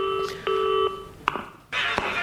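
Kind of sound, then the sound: signal or alarm, telephone ringing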